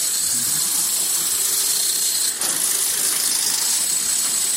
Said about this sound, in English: It's like, because I knew, we have that vision, but I didn't think it was literally jackhammers. But I know you go late at night, like, when else are they going to open up a floor, you know,